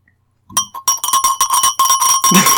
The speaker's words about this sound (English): she bought me a bell.